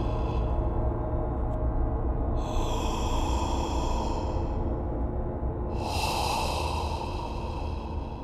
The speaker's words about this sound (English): And there, plainer than ever, for he was closer to it, was the breathing.